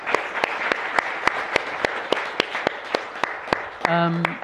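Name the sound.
audience round of applause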